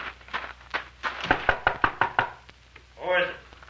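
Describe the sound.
A quick series of firm knocks on a wooden door of a cafe's back room in Mountain Rock, around nine raps in a steady, insistent rhythm, followed by a short call from a voice.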